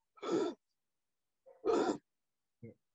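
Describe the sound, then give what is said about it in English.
A voice imitates laboured gasping, showing how the speaker's breathing changed while he lay bleeding on concrete: two loud, rasping in-breaths about a second apart, then a brief, softer catch of breath at the end, with silence between. “But yeah, my breathing had changed, and that was the scary part. My breathing had gone from being normal to”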